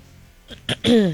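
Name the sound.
nose blowing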